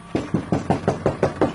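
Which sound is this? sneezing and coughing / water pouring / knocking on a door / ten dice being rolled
knocking on a door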